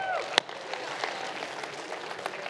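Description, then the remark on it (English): An audience claps in a steady, even wash of applause that holds at a moderate level throughout, with a single sharp louder clap standing out near the start. “Round of applause”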